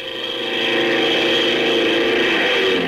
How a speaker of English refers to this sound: Plane number 7, now taking off for reconnaissance.